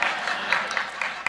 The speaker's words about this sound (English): I do not need an applause for that. Just for that, I'm going to make it 5 minutes. Y'all just added time.